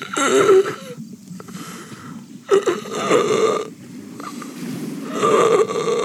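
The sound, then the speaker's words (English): A voice imitates ragged, strained breathing: rough, groaning inhales and exhales repeat in uneven bursts, fairly loud, with a gravelly, pained quality and no clear words. “And it's this labored breathing, almost unlike anything you've heard. It just sounds like pain incarnate.”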